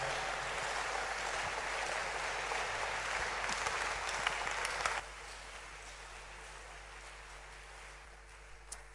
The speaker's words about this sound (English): Hallelujah. Let's clap our hands for Jesus.